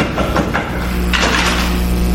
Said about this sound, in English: In the afternoon, he turned his steps towards his nephew's house. He passed the door a dozen times before he had the courage to come up and knock.